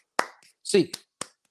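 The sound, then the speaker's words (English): Eight sharp, sudden claps ring out one after another as a rhythmic UCLA Bruins eight clap, with a short burst of voice between them. “Eight clap time, baby.”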